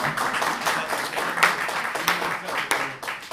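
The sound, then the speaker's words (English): A crowd claps together in a dense, steady burst of applause lasting a few seconds, fairly loud, with some murmuring voices mixed in. “So you either give me all your claps or no claps.”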